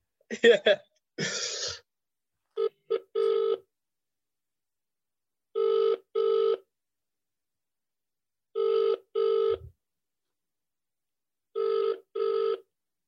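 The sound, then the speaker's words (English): After a brief cough and throat clearing, an outgoing random phone call to a woman rings out in steady double rings, four pairs spaced evenly apart, clear and fairly loud with no talking over them; she does not pick up. “She doesn't know I'm calling.”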